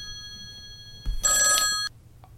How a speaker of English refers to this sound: Answer the phone, Tim.